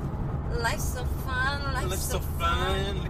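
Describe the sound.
Steady low engine rumble and road hum fill a car cabin from start to finish, with someone talking over the constant drone.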